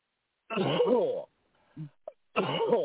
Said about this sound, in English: Deep breath and cough. Deep breath and cough. Deep breath and cough.